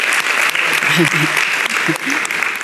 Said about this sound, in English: Good, let's applaud the mothers.